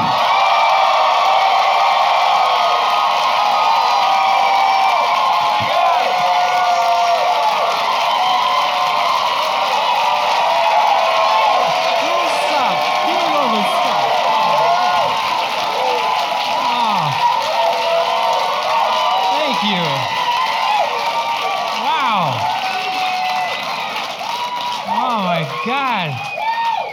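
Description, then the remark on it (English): A crowd at a Showtime taping cheers and applauds for comedian Pete Lee's entrance: dense, steady clapping and roaring voices with scattered whoops and shouts, staying loud throughout before easing slightly near the end. “Ladies and gentlemen, please help me welcome Pete Lee!”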